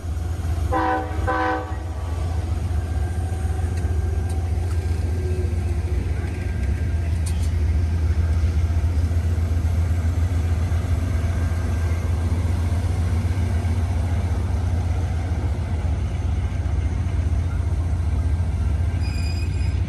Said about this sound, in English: Train is moving forward out of the yard.